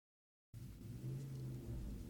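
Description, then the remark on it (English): A loud, low engine rumble starts abruptly after a brief silence and holds steady: a car going down a residential block with its engine blaring. “How many cars can possibly go down my block with their engines blaring?”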